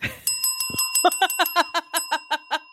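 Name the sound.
bell ringing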